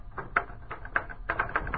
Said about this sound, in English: Everything was routine. Melody was at her typewriter working on the usual sheet of paper backed by the usual fluorocarbon. Routine.